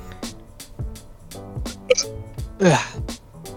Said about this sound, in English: Did you really just burp live on podcast